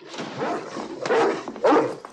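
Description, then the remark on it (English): A dog barks and growls insistently, several sharp bursts in quick succession with whiny, agitated yelps between them, sounding alarmed and defensive. “Your dog knows a flesh eater when he smells him.”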